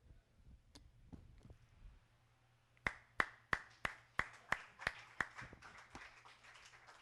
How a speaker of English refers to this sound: I just needed to read this and stop doing all my talking. That's just so awesome. I had to applaud the word of God.